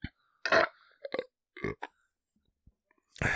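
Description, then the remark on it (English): A man lets out a few short burps in quick succession with brief pauses between them, ending in a longer, louder belch; no one speaks. “That's why, because he's a burping idiot.”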